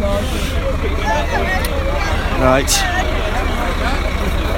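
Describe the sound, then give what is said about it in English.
Steady low engine rumble and traffic noise fill a busy coach park full of identical white coaches, while a crowd murmurs and voices chatter, with a brief hiss and rising whine from a vehicle partway through. “And there's absolutely tons of them that all look the same. So I don't know which coach I'm about to get on.”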